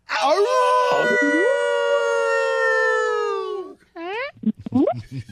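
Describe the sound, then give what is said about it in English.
A male caller from Virginia lets out a loud, drawn-out wolf howl, holding one rising, wavering note for several seconds, then adds a couple of shorter, swooping howls, imitating a wolf. “Yeah, man, that's a very respectful howling hello.”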